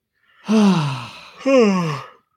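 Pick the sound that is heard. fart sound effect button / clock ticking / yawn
yawn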